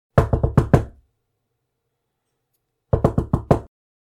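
Knocking on the wooden front door of a gray two-story house: a quick set of four firm raps, a pause of about two seconds, then another four. The knocks are clear with no talking.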